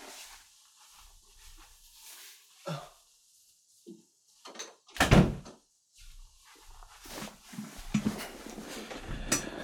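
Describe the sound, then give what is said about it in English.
A door swings and shuts with a loud, sharp thud about halfway through as a cat is locked out of the room, surrounded by softer knocks, shuffles and light clattering movements before and after. “I had just locked my cat out of the room.”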